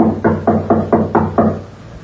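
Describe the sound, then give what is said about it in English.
Six firm knocks on a wooden door in a quick, even rhythm, fairly loud, with a faint hum underneath and no voices. “Knock again.”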